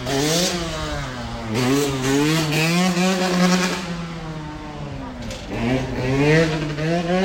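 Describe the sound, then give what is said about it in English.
A motorcycle engine revs loudly, its pitch climbing and dropping in repeated surges over several seconds as it roars past while its rider does a wheelie. “Yeah, we just saw a motorcycle go by, like, doing a wheelie, the ultimate kind of machismo symbol, I guess.”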